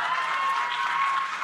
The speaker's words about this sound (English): Round of applause if you are one of our beloved Patreons. Thank you so much, first of all.